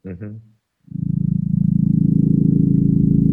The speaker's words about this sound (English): And what's that noise? Helicopter? Yeah. It's a helicopter being zoomed in and out with echo cancellation.